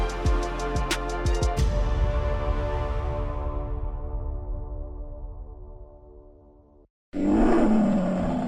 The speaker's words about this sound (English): Watch out. Here comes that roar.